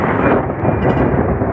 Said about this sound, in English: On the West Coast, in Arizona, a rarely seen or heard winter weather phenomenon, thundersnow.